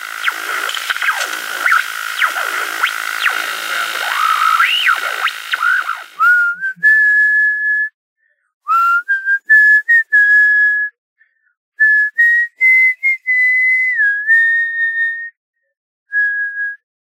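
A person whistles the Star Wars theme in clear, pure notes, phrasing it in short bursts separated by brief pauses, after a few seconds of busy, bubbling sound at the start.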